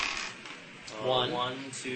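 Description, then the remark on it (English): A handful of dice rattles and clatters across a tabletop in a quick burst of small clicks, with a voice murmuring faintly underneath, as a player makes an athletics roll in a tabletop game. “All right, make an athletics roll. Probably about 11 dice for you.”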